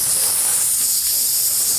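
A loud, steady sizzling hiss, bright, holding at an even level without breaks or any voices, as a glowing magical shape like a lightning bolt and crescent flies into a character's chest and sizzles and burns.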